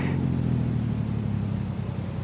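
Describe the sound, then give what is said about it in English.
A car engine rumbles steadily and low, fairly loud, idling as the car comes to a halt at the beginning of a steep grade on an empty road, with no voices present. “And then, at the beginning of a steep grade, I stopped the car.”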